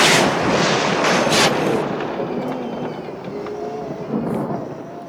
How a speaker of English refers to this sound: No child would sleep through that storm with their windows open, and her windows are open.